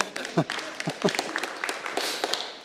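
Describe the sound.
A short burst of scattered applause from a small group, thanking a group member who put something up for them, irregular claps rising then thinning out, with brief voices and murmurs mixed in underneath.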